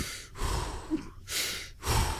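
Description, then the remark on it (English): A voice imitates slow, heavy breathing: three long, noisy breaths in a steady rhythm, fairly loud, each a rasping hiss separated by short pauses. “Heavy breathing.”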